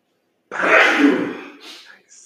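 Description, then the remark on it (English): A single loud sneeze, from a person with lights shining in their face, bursts out suddenly after a moment of silence, then trails off into a brief breathy exhale and a faint hiss. “I got lights in my face. I might sneeze.”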